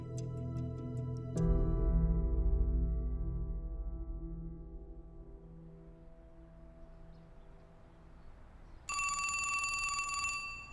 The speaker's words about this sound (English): Phone rings, you pick it up, ask who's calling, then you take a message or you hand it to the person they want to talk to.